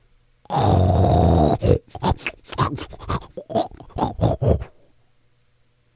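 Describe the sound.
A voice imitates a man snoring like a pig while asleep in a truck: one long, rough, low snort, then a string of short choppy grunts and snuffles that stop abruptly.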